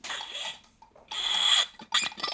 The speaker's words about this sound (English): By the way, that's I have the loudest thing. Water bottle ever. Ready?